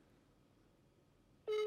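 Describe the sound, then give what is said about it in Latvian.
A faint hiss, then a loud, steady telephone tone cuts in abruptly at the very end, the kind of signal heard when a call doesn't go through: a phone call to Agris that he does not pick up. No one speaks. “Agris neceļ, liek fantasy.”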